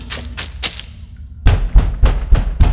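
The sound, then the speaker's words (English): Knocking on a huge door in a cave: three lighter raps, a short pause, then five heavy, booming thuds in a steady rhythm with deep low resonance. No one speaks. “Let's knock.”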